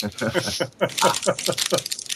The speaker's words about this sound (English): Pouring salt on everything. We're eating crisps.